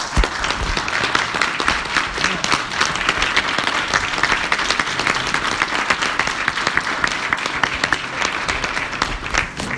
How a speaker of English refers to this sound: Please welcome him with a warm hand clap.